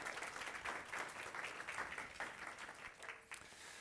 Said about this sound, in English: And we're so glad to have him. Pastor Peter, let's welcome him with a round of applause.